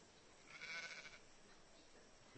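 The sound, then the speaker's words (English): A single short sheep bleat, wavering, rises briefly over a steady background hiss, then fades away with no talking. “Come on. Come on. Come on, sheep. Good girls.”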